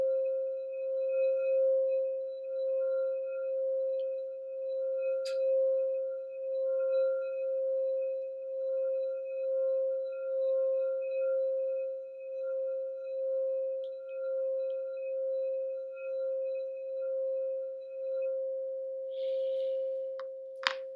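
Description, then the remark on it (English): During a guided breathing meditation, a singing bowl rings with a steady, pure mid-pitched tone that sustains for about twenty seconds, gently pulsing and wavering as it resonates, with faint overtones shimmering above it. “Breathe than the sound of the bowl.”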